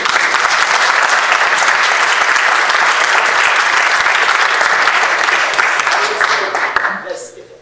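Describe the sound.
A large audience claps in a dense, steady wash of applause with some voices cheering inside it. The applause holds at full strength for about six seconds, then tapers away.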